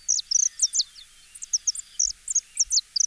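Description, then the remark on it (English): A finch, a species native to South America and introduced to Hawaii, sings its bright, whistle-like song: a rapid, uneven stream of short high-pitched chirps and slurred notes, fairly loud and continuous, with no talking. “Native to South America, they were introduced to Hawaii in the early 1960s, mainly because of their colorful plumage and their pleasant whistle-like songs.”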